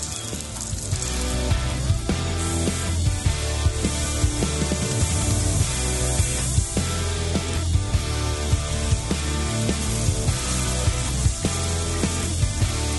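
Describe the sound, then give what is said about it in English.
Steady, dense sizzling and crackling of eggs, chicken wings and grilled cheese frying on a hot grill, grease dripping into the fire, with sharp pops and spits scattered throughout over a continuous hiss, no one talking. “We're cooking eggs right here with chicken wings and grilled cheese.”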